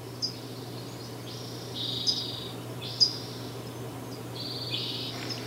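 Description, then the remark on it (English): A near-silent outdoor stillness at Sugarloaf during a drought, recorded on April 15, 2015, with no wind and a dried-up stream, a low steady hum, broken by a few faint, scattered high-pitched chirps from birds in the trees, sparse and subdued. “Bernie could see birds in the trees, but they were mostly quiet because to sing takes energy”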